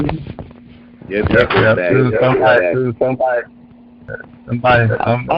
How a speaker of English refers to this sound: I hear that echo.